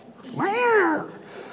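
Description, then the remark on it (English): A single drawn-out meow from Bill the cat, rising then falling in pitch, clear, lasting under a second with no talking around it. “He was just love. Bill the cat.”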